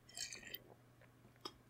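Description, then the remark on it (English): A quiet sip of water: a brief slurping draw followed by a soft wet gulp or click about a second later, with no talking. “Sorry, just give me 1 sec to take a sip of water because I'm actually suffering.”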